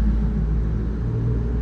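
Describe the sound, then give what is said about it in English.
A deep, steady engine rumble from a heavy truck idling or passing, low and continuous with a droning hum, no voices. “Sounds like some kind of truck.”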